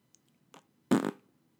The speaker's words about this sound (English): There you go. You just heard him fart.